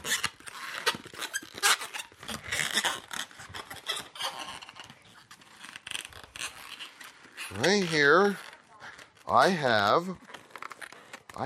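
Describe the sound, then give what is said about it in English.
Rubbery squeaking and rasping as a balloon is twisted into a snake, ending in two loud, wavering high-pitched squeals, with a person speaking briefly at the start. “I have a balloon. So I'm going to show you with balloons what God's punishment was on his people that day.”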